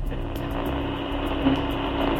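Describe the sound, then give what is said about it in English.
A car cruising at highway speed, about 85 miles an hour with the driver's foot off the gas pedal, heard as a steady, loud rumble of engine and road noise that holds constant throughout, with no voices. “And still the car's going. I'm going 85 miles an hour”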